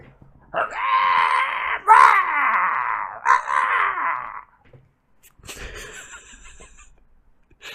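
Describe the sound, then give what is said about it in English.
A human voice imitates a shrieking, monstrous bird call in three long, harsh, wavering cries, loud, followed by a quieter scratchy rustle with no speech. “He turned, shook his shaggy head to get the hair out of his face, and gave an odd shrieking cry that echoed through the dark trees, like the call of some monstrous bird.”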